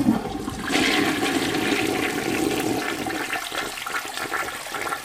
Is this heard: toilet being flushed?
yes